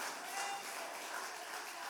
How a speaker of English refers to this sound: Oh, I'm just because we can we give him one more hand clap of praise? Just because he's so worthy. Just because he's so faithful, because he's so kind.